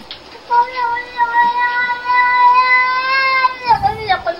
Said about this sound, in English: Oh no! Is that the cat? My cat used to do that. Look at him. Oh, I love it. I love it. I thought that was a kid or something.